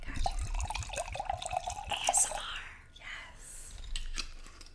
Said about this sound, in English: Pouring that wine, girl. I hear it. Dug-a-lug-a. We need wine to get through every podcast because there's so much topic. So pour me up, girl.